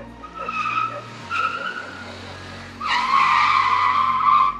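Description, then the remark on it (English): High-pitched brake screeching in three squealing bursts, the last one loudest and longest, as a scooter brakes hard to a sudden stop at a shop, with no voices. “A sudden creeping sound of the brake disturbed the dog.”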